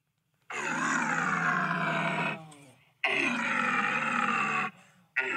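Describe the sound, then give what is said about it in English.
A loud, rasping roar blown through an extending bugle-like tube made of three parts that accordions in and out, sounded in two long sustained blasts, each about two seconds, with a third starting just as it ends. No one talks. “It's basically like a bugle tube, but it's got three parts, and yeah, it accordions in and out”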